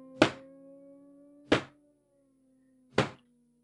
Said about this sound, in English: It was likely to be her grandmother coming to bring her some milk and toast, a long-held bedtime tradition. The knock came again.